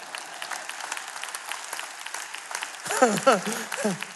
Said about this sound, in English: The happiness that Jesus wants to give us is we become good for the world. That's the part where you clap.